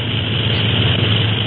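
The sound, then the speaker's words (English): A steady, loud drone of a Clipper flying boat's propeller engines in flight above the fog, six hours out of San Francisco, a low continuous rumble that holds even throughout with no voices over it. “Gee, I can hardly believe that we're really flying in the Clipper.”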